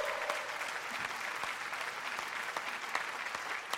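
Steady, dense applause from an audience at 98.9 WCLZ's Studio Z at the State, a continuous wash of many hands clapping at a moderate level for a few seconds, with scattered sharper claps standing out.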